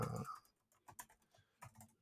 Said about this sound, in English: But your typing sounds great. That's podcast. What we get with condenser microphones. That's it. That's why I got this compressor. I want the pop, the punch of every key. Clickety clackety.